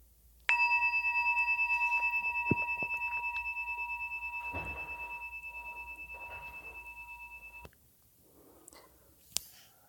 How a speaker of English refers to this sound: The bell rings.